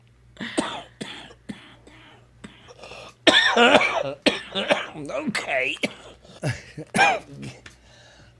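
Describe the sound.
A man coughs in several sharp bursts, some sounding like throat clearing, followed by louder voices talking and laughing over a low steady hum.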